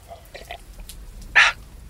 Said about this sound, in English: something about drinking beer alone with a crow cawing at the windowpane feels a little, I don't know, Edgar Allan Poe for me